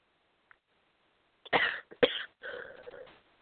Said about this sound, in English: Please excuse me for the interruptions when I cough.